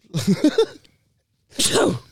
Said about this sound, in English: I need to sneeze, but go on.